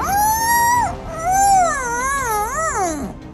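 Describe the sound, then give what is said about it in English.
A strange, high whining sound made by Badmoodia, not quite crying and not quite screaming: one steady, sustained note breaks off, then a second longer whine wavers up and down in pitch before sliding downward and fading out. “she heard a strange whining sound.”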